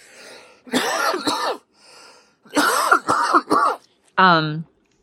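Several harsh coughs burst out in two clusters, with a throat-clearing sound between them, followed by a short strained vocal groan at the end.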